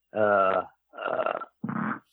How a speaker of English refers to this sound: I ripped a hell of a fucking fart here. Yeah, you know what? It's impressive. I can even smell it. So that's... Well, I don't know about, I don't get smell, but you can hear some of that bitch. Wow, that motherfucker rippled.